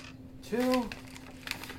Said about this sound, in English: I only have 3 dice left in my bag, so. Quit throwing dice!